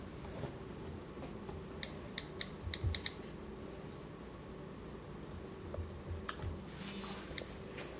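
Soft, quick taps of typing on an iPad touchscreen, coming in short irregular bursts with pauses between, quiet against a faint steady background hiss. No one speaks.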